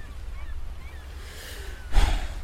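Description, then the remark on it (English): Waves of a gray ocean wash in with a steady low rumble of surf, then one louder wave surges and breaks about two seconds in, with a faint windy hiss throughout and no voices. “Enjoy staring at the gray ocean.”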